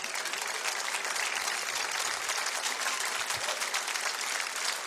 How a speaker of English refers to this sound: Hallelujah, I need to speak to somebody from the CDC because they're cheering out here.